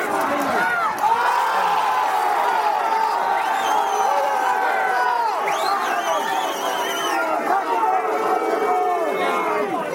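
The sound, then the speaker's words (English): A large stadium crowd roars in disapproval at a rugby tackle made without the ball as Connacht break through into the Newcastle Falcons 22, a loud, steady wall of overlapping shouts, jeers and scattered whistles that carries on without a break. “And the crowd weren't happy with that tackle without the ball from as Connacht broke through into the Newcastle 22.”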